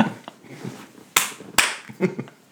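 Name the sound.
hand clapping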